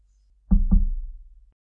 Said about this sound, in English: trudge up the lane to the front door and knock.